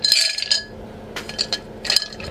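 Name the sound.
dice rattling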